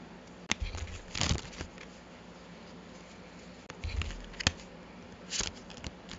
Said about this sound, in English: So, while I was shuffling, one card quite literally flew out of the deck at me, and that is the Weaver of Visions, which is the renamed version of the Queen of Cups.